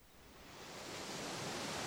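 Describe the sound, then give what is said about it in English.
A steady hiss of ocean surf at the start of a song, swelling gradually louder over a couple of seconds, a soft, broad wash of waves with no voices. “It's because of the ocean sounds, wasn't it?”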